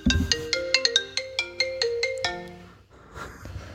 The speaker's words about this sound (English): I have the default ringtone. There you go.